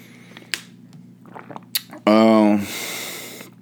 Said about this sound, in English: Let me take a swig of this water right quick.